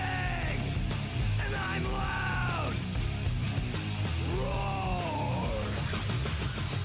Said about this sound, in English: car insurance can be hard. Like early 90s heavy metal hard. I'm yelling and screaming.